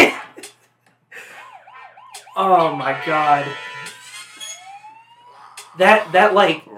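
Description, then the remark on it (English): A very high, thin squeaky note, the highest a mini trumpet allows, sounds briefly in the middle, among wavering siren-like tones and brassy blasts, followed by a short spoken exclamation. “That really high squeak, the beep in the middle of it, that was me playing the highest note that would allow on a trumpet, like the mini trumpet.”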